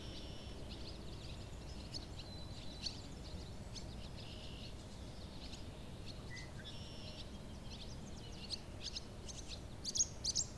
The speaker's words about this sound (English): There's the barn swallows.